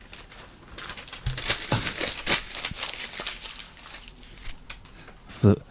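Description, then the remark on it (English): Continuous crinkling and crackling of paper being screwed up into a ball, with irregular sharp rustles for several seconds, ending in a single soft thud as the paper lands in the bin. “For the evidence on the tape, the screwed up paper landed straight in the bin.”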